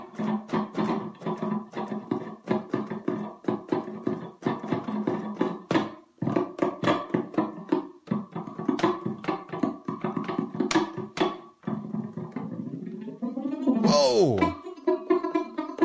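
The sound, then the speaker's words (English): A bass guitar plays a fast run of plucked notes through a flanger, its tone whooshing and sweeping, ending in a swirling, jet-like swoop of pitch near the close. “Flanger.”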